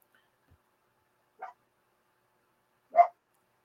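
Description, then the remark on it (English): A dog barks twice while looking for another dog, a single short bark followed a moment later by a louder one, against an otherwise quiet background with no talking. “My dog's still looking for Yarg's dog right now.”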